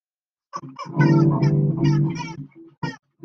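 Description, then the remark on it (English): A pet parrot squawks loudly and harshly, a run of raspy, grating calls followed by a few short separate squawks, with no one talking. “Bad parrot. Bad parrot. You do not want to become like your cousins, Captain Squawk and Squawk.”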